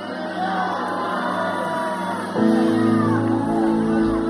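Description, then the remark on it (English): A church audience shouts together at the end of a service, before being seated, in a loud, sustained roar of many voices, swelling louder about halfway through with whoops and yells rising above the crowd. “Come on and shout one more time before you're seated.”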